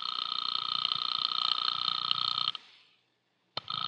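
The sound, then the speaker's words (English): A telephone rings unanswered on a call placed to a party 2,000 miles away, a steady, buzzy electronic tone for about two and a half seconds, falls silent for a moment, then starts ringing again. No one speaks. “I sat there for a full 5 minutes listening to the ring of a phone I knew wasn't going to be picked up.”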